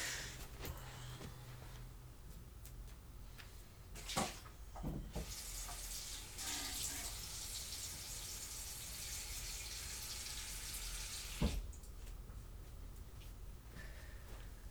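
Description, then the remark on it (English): A faucet runs steadily, a broad hiss of water pouring into a container for several seconds as blue paint water is changed out, with a few clunks and splashes as the flow starts and stops, fairly quiet. “I gotta change my water out. It's already very blue.”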